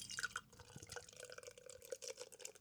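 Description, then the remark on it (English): Beer pouring into a glass on a Saturday night, a steady trickling splash with small gurgles and drips running for a couple of seconds, no voices. “Just going to pour a bit of my beer out.”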